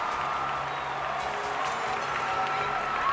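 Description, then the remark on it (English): A large stadium crowd at the 2012 London Olympics cheers and applauds steadily as gymnast Michaela Maroney's name is called to accept an Olympic medal, a dense, continuous roar of voices and clapping that holds at an even level throughout. “Finally, her name is called, prompting a huge cheer from the crowd.”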